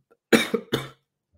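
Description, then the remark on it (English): Two quick, harsh coughs in close succession, loud, with a short throaty rasp between them, then silence. “I'm going to try to see if I can go for an hour if my cough lets me.”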